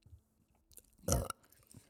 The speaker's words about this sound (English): Yeah, I like that burp. That wasn't a real one though. Okay. I just wanted to be a part of the burp.